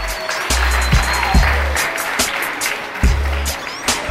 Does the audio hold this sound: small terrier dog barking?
no